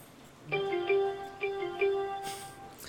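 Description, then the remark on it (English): A phone app notification alert for a sports news update plays a short melodic jingle of bright electronic tones, four quick note steps over a sustained ring, fairly clear, with no one talking. “Getting a Sports Center update there. The sound just played on the...”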